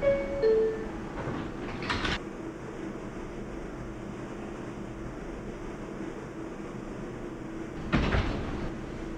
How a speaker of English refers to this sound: I think you opened up one of the doors by mistake.